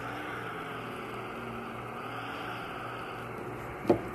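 A powerful engine of a number 42 car drones steadily, a continuous rumble with a low, even hum throughout, and a short sharp knock just before the end. No one speaks.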